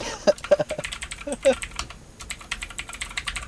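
Rapid, uneven clicking of keys on a computer keyboard, moderately loud, with irregular bursts of keystrokes running throughout the short stretch.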